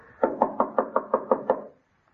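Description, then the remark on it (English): Eight quick, evenly spaced knocks on the wooden front door of an unlit house whose doorbell is out of order, moderately loud, followed by silence. “Oh, it was out of order when I was here. I had to knock.”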